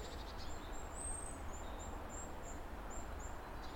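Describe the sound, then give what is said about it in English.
Faint, very high-pitched thin peeps from small birds, probably goldcrests, high up in the trees, repeating irregularly over a steady hiss of outdoor background noise with no talking. “just trying to catch up with some little wrens and little peeping birds high up in the trees, which feel a bit gold crusty.”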